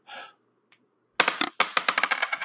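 A quarter is flipped with a soft flick, then after a brief silence it lands with a sharp metallic clink and rattles and spins in quick, bright, ringing bounces before settling.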